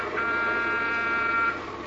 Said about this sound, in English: Okay, Jerry, blast your horn.